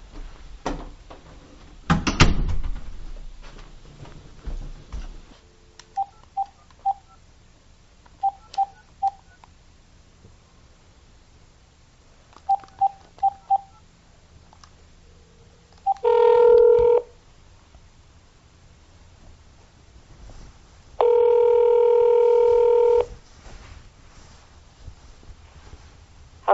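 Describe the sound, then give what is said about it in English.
Telephone keypad tones beep in quick clusters of three or four as someone dials a person's home phone number, followed by two longer, louder steady tones, with a dull thump near the start and no talking. “I am going to go out to my office and get your phone number. Call you at home instead.”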